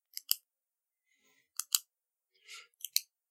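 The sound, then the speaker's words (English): A voice imitates ballpoint pens clicking, as nerds surrounding Puck in a parking lot click their pens at him: three crisp double clicks spaced about a second apart, fairly quiet, with a short breathy hiss between the last two pairs. “And Puck gets surrounded by a group of ominously threatening nerds who just stand around, like, clicking their pens at him, like...”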